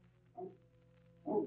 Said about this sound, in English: What dog is that? He came with the master.